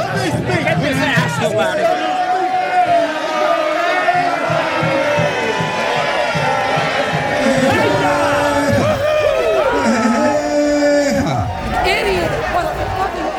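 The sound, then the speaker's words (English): A large crowd at a rally roars and cheers continuously as security removes a man from the stage, with overlapping shouts, whoops and excited chatter at a steady, loud level throughout. “obfuscate Cash's antics from the crowd, which cheers when security finally removes him from the stage”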